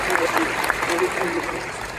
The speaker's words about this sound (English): Listen to the applause.